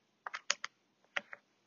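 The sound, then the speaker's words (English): A knife finely chops parsley on a cutting board: a quick, uneven run of about six crisp taps, with a short pause midway and no voices. “We're just gonna continue to dice this, or not dice, but chop. I don't know. Finely chop.”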